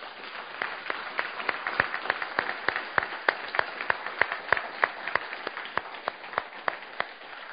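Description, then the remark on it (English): A crowd applauds warmly for several seconds to show appreciation for a man leading their music for the last Sunday, a dense wash of many hands clapping with sharper individual claps popping out at an uneven, steady pace. No one speaks over it. “So I thought maybe it'd be nice just today at least to just show him your appreciation by a nice warm round of applause.”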